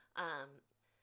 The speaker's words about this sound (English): In the background, my cat is meowing.